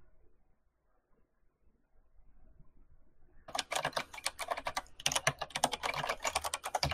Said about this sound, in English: I can hear you now. You're typing.